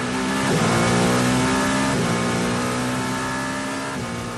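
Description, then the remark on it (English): A loud engine of the Toyota number 7 race car at Le Mans revs hard and steadily climbs in pitch, dropping briefly at each gear shift before surging again, with no voices over it. “That's the Toyota number 7 car.”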